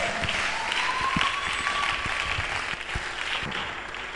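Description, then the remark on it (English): An audience on its feet applauds steadily to welcome a bishop as speaker, a dense wash of many hands clapping with no pauses, sustained and fairly loud throughout, with faint voices mixed into the noise. “To whom honor is due, rise up to your feet, somebody, with a rousing welcome and applause.”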